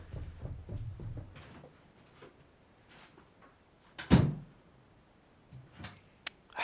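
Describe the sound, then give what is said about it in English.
A door is opened with a single solid clunk of the latch and handle, followed by a few lighter clicks and faint shuffling. “Yeah, just open the door. Just let me get out of it.”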